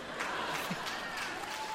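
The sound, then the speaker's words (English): Steady, dense applause from an audience: a continuous crackle of many hands clapping at an even level throughout, with no voices rising above it. “Stay, please, hold the applause.”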